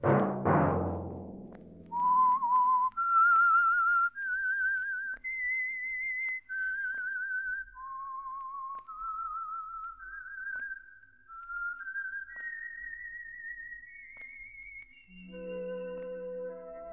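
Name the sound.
whistled signature tune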